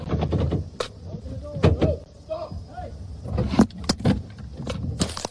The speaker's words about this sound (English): Whoa! I was right. Yeah, dude, they smashed the window in. Was that necessary?